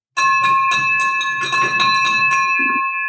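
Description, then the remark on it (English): A bell clangs loudly, struck rapidly around nine or ten times in a steady rhythm, its bright ringing tone sustaining between strikes with no voices present. “And now this was like the surreal moment where the bell has been rung for you, my friend, for doing really an 11K crazy deal, which is awesome.”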